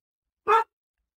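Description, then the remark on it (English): A single sharp, loud dog bark rings out once at a neighbor arriving, then silence; no voices accompany it. “Sorry, that's my doggy. I have a neighbor coming.”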